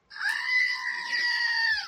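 A loud, sustained goat-like scream, one unbroken high-pitched bleating cry lasting nearly two seconds with a steady, harsh tone, heard alone with no talking.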